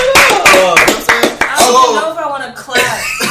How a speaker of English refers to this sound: Why y'all clap, man?